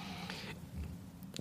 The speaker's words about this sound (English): Now that was, pardon me for the cough there, that was stunning to me for a bunch of different reasons.